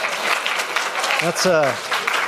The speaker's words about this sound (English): I have 1 minute left. I deserve applause for that. Come on.